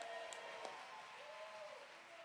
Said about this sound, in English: Come on, somebody shout and clap your hands. If you believe this morning, come on, clap your hands and give God a shout of praise.